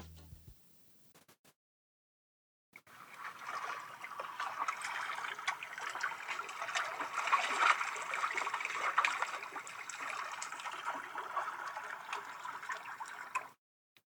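Steady flowing water runs continuously for about ten seconds after a brief quiet start, an even rushing and trickling wash with no voices.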